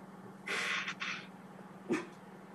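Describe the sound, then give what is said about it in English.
A dog gives two small, muffled gruff barks, more breathy huffs than full barks: a longer airy one, then a short sharper one a moment later, over a low steady hum. “Yeah, it's almost like he doesn't want to fully bark at the ghost for out of fear of repercussions.”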